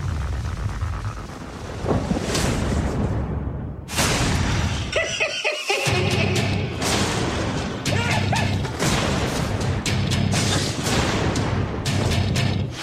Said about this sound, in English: It's only a storm.